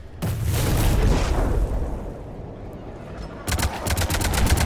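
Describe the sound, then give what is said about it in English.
Loud battle noise: a heavy booming blast rumbles and fades as Reaper Dragons knock a Cerberus shuttle out of the air, then rapid bursts of gunfire crackle in a fast, evenly spaced rhythm near the end. “We got Reaper Dragons, and they knock a Cerberus shuttle out of the air.”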